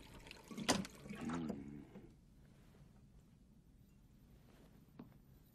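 A short splash of water being poured, followed by a brief gurgling swallow, then near silence with one small click toward the end. Fairly quiet, with no talking.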